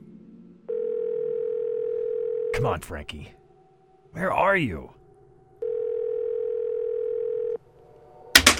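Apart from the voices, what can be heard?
telephone ringback tone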